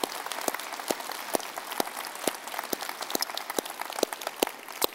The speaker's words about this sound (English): Hey, would you guys applaud? Big group of people.